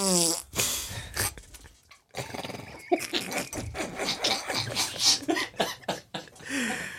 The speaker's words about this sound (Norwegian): Ja. Det var en mannafis.